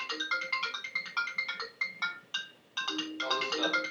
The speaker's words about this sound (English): You okay there? Are you ringing away? Yeah, I think my next interview calling me. I'll just call him back.